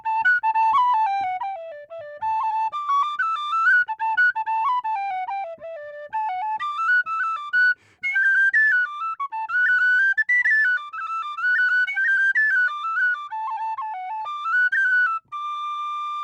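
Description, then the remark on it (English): A lively Irish jig played on a tin whistle, bright high notes skipping in a quick bouncing rhythm with ornamented runs, clear, no voices, continuing steadily for the whole stretch. “Is there a happy jig on your tin whistle? Oh, sure, absolutely.”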